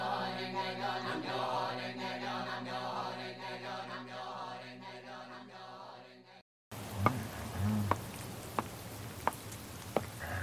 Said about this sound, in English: God, I'm starting to... it's raining, I'm getting wet.